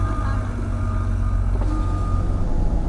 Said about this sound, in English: Okay, pulling in, and in the interim while I park this car, probably shouldn't be recording and driving